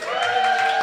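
A live audience claps and cheers loudly and steadily, a dense wash of applause with whooping voices layered on top, sustained for the whole short burst.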